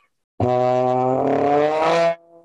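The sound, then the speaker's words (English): A loud trombone slides upward in one continuous glissando from its furthest slide position all the way in, in the New Orleans tailgate trombone style, its brassy tone roughened by a raspy, buzzing growl. It holds for under two seconds, then cuts off into a faint tail. “And so when they're playing back here, they can do these growls, these glisses, these from their furthest slide position all the way in.”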